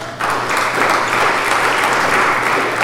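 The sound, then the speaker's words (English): An audience claps their hands as a hand clap offering to the Lord after a scripture reading, sustained, dense applause, a loud steady wash of many overlapping claps that begins abruptly and continues without pause. “Can we give the Lord a hand clap offering?”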